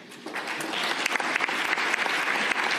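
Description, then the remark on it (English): A crowd applauds Ron DeSantis, many hands clapping in a dense, continuous wash with scattered sharper claps, holding at a fairly loud level throughout without any talking. “And yes, just round of applause for Ron DeSantis right there.”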